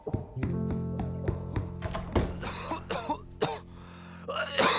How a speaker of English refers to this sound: But before he could set out to retrieve the sign, he heard coughing from the next room.